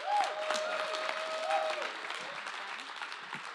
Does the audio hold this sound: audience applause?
yes